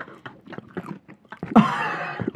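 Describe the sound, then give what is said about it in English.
Wet, crunchy chewing right up against the microphone, a steady run of bites and mouth sounds that swells into a louder, rustling burst near the end. “Chewing, dude.”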